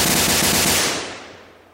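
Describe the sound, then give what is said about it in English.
A loud explosion sound effect: a dense, crackling blast with a rumbling low end that rolls off and fades over about a second. No voices. “Explosions!”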